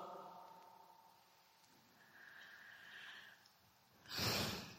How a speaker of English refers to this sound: Bless you.